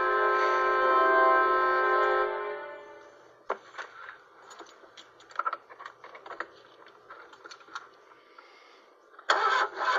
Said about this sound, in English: Watch the car won't start.